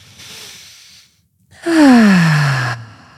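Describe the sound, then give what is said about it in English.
A soft, airy inhale is followed after a brief pause by a louder, longer exhale that turns into a voiced, falling sigh. It is a single deep breath cycle with no talking. “Like, oh yeah, you're here, you're present, you're in your body, you can take a nice deep breath.”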